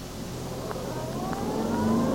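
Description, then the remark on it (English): A car engine draws steadily nearer, its rising whine and rumble swelling in loudness over a couple of seconds as it speeds in and past, splashing mud onto a pedestrian's trousers. No voices are heard. “Oh, look out, Mr. Bridges, a car.”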